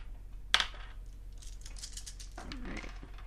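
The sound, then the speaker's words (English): Six-sided commendation dice are rolled: small hard dice clatter onto a table with a sharp initial hit, followed by scattered light rattling and clicking as they tumble and settle. “First thing you're going to do is you're going to roll all your commendation dice.”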